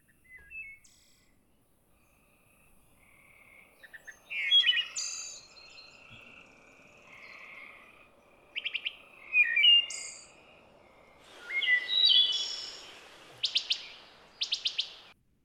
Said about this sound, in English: Yeah, you could hear that kind of ethereal or flute-like quality that you were talking about with the sound song of the wood thrush kind of floating over the rest of the ambient forest sounds.